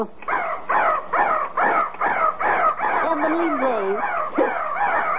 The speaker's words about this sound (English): Because at 3 o'clock, that little crow pops out of the crow's nest and caws 3 times. I'd like to hear that.